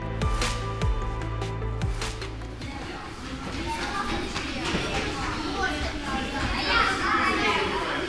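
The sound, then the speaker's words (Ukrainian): A crowd of children chatter and call out as they pass by in a national natural history museum in Kyiv, their overlapping voices in a continuous lively babble, with some low rumbling noise at the start. “От зараз тільки дітей пропустимо.”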